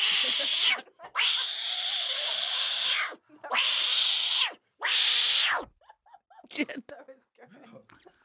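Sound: people imitating cat meows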